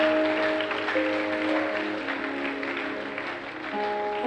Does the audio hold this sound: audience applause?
yes